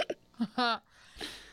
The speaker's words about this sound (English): Ooh. I have a hiccup. I have, like, burps.